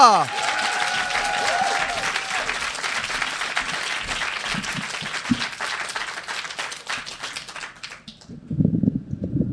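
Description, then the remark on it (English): A crowd breaks into sustained, dense applause for the poet Harry Baker, with many hands clapping steadily for several seconds, then the clapping fades out as a voice begins speaking. “Ladies and gentlemen, please put your hands together, make a lot of noise for Harry Baker!”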